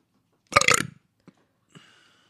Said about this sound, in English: You burped, and then we stopped talking. See, people that are watching will know that I burped. People that are listening thought you burped for a little bit.